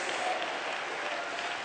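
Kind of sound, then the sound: crowd, audience clapping hands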